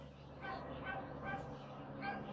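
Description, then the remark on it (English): A dog barks several times in a steady rhythm, each bark short, over a continuous low rumbling background. “this has a dog barking, aircraft gonna pass by, and somebody's brakes need to be fixed in front of the bus.”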